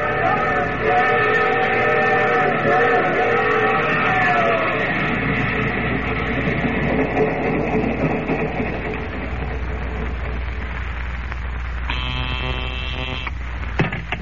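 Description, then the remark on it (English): A steam train rumbles heavily as it slows to a halt, with squealing metallic tones early on and a short, loud whistle blast near the end. “Oh, the train's halted, Danny. Come down.”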